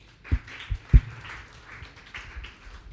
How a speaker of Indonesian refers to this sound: Come on, tepuk tangan buat Tuhan.